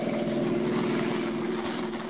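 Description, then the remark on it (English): A car engine drones at a steady, fairly loud pitch, a continuous rumbling hum with no voices, holding constant from start to finish as Clark Kent and Lois Lane's car speeds out of the darkening city toward Melville. “As their car speeds out of the darkening city, they discuss their assignment together.”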